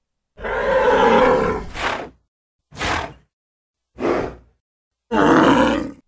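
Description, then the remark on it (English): Loud, rough grunts and snorts from bulls, 100 raging bulls bursting out of a gate, in four bursts: a long throaty bellow, two short sharp snorts, then another drawn-out grunt, with brief silences between them and no talking. “The gate burst open and out ran 100 raging bulls charging right for them.”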